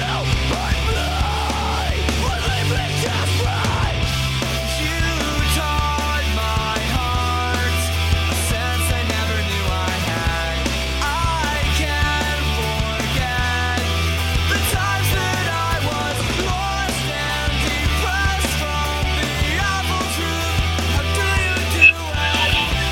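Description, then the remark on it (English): A loud, dense rock band demo plays throughout, with heavy distorted guitars, pounding bass and drums, and harsh screamed vocals riding on top of the steady wall of sound. “Well, thank you for premiering and sharing that with us, the premiere of that demo.”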